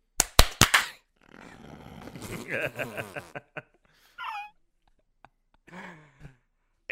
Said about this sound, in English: Oh, you guys ready to clap? Yes.